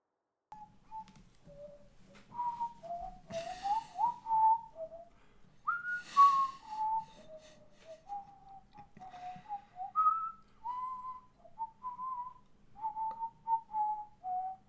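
Someone whistles a wandering melody of short, clear notes around one pitch range, steady for about fifteen seconds, with a couple of breathy bursts and a faint low hum underneath.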